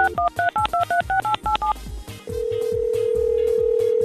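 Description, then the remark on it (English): A rapid run of about eight touch-tone beeps as a phone number is dialed, then a brief pause and a steady, continuous ringing tone. No one speaks. “Let's give somebody a call.”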